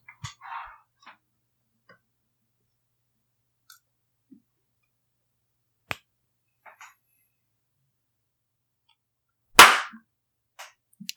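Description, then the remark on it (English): One loud, sharp hand clap, made to sync a recording, stands out against near silence, ringing briefly before fading. Scattered faint clicks and taps occur before and after it. “All right, we got our freaking clap.”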